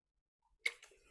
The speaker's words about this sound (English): Hold on one second. I have to take a sip.